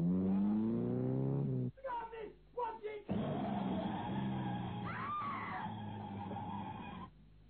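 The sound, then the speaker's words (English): A woman standing in the middle of the road cries out, followed by a few short voiced bursts, then a loud, sustained screech of brakes with a rising squeal near the end before it cuts off abruptly. “Nellie, the deserted one, middle of road, gesticulating, the shout, screech of brakes, and Nellie knew no more.”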